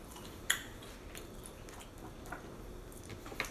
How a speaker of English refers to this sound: Cheers to awesome toast. Yeah, simple. Mmm. Super crunchy too. It's so soft. Oh man. In the middle.